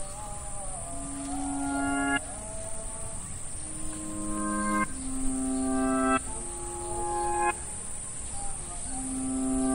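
insect, crickets chirping

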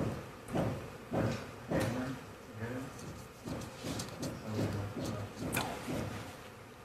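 tool, hammering in the background

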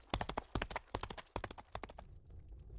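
animal, horse hooves clip-clopping

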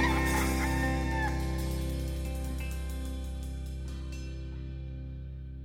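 bird, rooster crowing

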